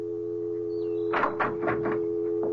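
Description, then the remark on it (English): A door opens with a quick series of rattling, scraping bursts as someone walks in, followed by a softer knock, all over a steady electrical hum. “And see what happens when I walk in that door.”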